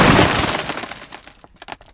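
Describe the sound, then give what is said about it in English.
A single unedited hammer strike, recorded as source material for a composite explosion sound effect, lands with a loud, bright, crashing impact that rings and fades over about a second, followed by a few scattered, sharp tinkling bits of debris. “This is an unedited hammer strike.”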